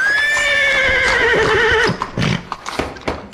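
A horse whinnies loudly with a long, quavering neigh, then hooves clip-clop in a quick, uneven patter.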